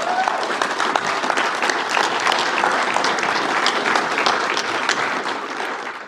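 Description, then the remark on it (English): Sustained applause from a large church audience during a sermon, a dense, steady clatter of many hands clapping at once, loud and even for several seconds before tapering slightly at the end. “I'll take that applause as a stopping point.”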